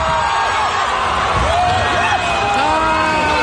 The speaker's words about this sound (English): And that almost became an impossibility when he went down to Comic-Con in Brazil. He went down to greet fans, and the barricade collapsed, nearly pinning him to the stage. Let's hear that.